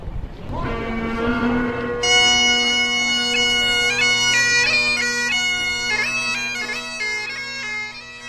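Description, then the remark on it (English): A bagpiper at the front of a procession through Brightlingsea, with sea cadets, plays: bagpipes start up with a swelling, steady drone, then a loud, bright chanter melody joins in about two seconds later, moving through quick stepped notes over the unbroken hum in a marching tune. “Roger Tabor, takes his position at the front of the procession, in front of some sea cadets and a bagpiper, who will play the music to accompany the procession through Brightlingsea.”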